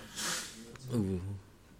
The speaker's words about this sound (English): Podcast sniffles. Yep. Now, yeah, just for some context, it was raining outside, so... okay, yes. We're wet and we're drunk.